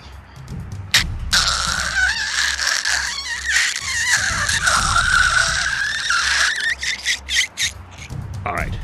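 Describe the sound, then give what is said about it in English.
A glass cutter scores an apartment window several stories up in one long, continuous high-pitched squealing scrape lasting about five seconds, with a few short scratches before and after it. “hand me the night class cutter.”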